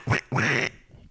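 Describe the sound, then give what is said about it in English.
A person imitates a duck, giving two loud, nasal quacks in quick succession, the second longer and more drawn out, followed by a brief quiet murmur. “I think I did my quack sound, but I'll just do it again.”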